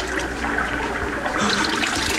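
Water splashes and sloshes continuously as someone washes their eyes in the pool of Siloam, steady with no pauses and no voices.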